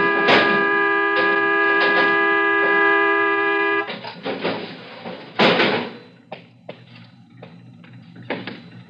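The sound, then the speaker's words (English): A stuck car horn blares in one loud, unbroken tone for nearly four seconds, then cuts out abruptly, leaving a handful of scattered clunks and knocks. “I'm not blowing my horn. It's gotten stuck.”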